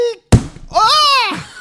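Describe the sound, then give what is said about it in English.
A single heavy, booming thud, then a drawn-out, wavering voiced noise: a person vocally imitating a steel-plated door being kicked in, with no other talk. “I kicked the door in.”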